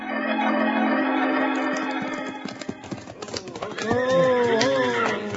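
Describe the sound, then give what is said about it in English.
Several horses clop to a stop as three riders rein them up near the steps of the Springerville schoolhouse, hooves thudding irregularly over a steady low rumble, then a loud, wavering whinny rises and falls near the end. “Abner, Wild Bill, and Jingles are reining up their horses near the schoolhouse steps”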